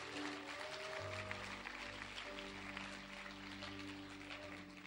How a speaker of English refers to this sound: If you're going to clap, you might as well do a good clap on that point.